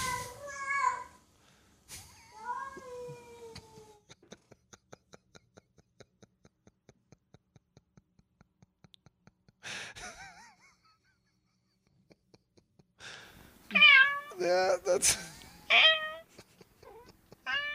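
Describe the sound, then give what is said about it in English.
A cat meows several times from a video of hours of meowing being played: a few early cries, then a loud cluster of overlapping meows near the end, with a steady rhythmic ticking purr-like pulse in between and a brief voice. “We used to get these videos because this is like 8 hours of meowing and stuff.”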